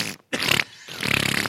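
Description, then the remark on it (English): A voice imitates a wet, dribbly fart with the mouth, two sputtering bursts separated by a short pause, fairly loud with no words spoken. “And he'd do a little dribbly fart.”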